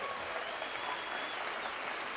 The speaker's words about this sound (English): Congratulations. Y'all give yourselves a round of applause. It's unbelievable.